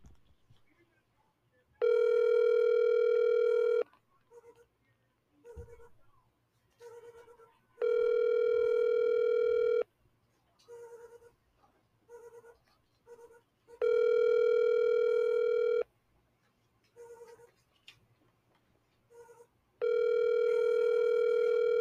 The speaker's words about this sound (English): I'm going to go try to go get Harrington on the phone. Let's see if he answers.